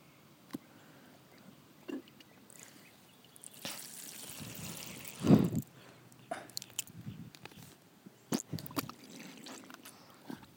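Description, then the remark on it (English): Wet mouth sounds of someone spitting water back into a water bottle, with a gurgling splash in the middle and scattered drips and smacks around it; no one speaks. “Are you spitting your water back into your water bottle?”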